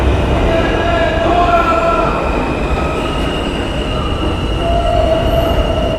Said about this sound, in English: The New York City subway sounds hectic.